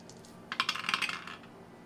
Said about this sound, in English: Throw some dice for me.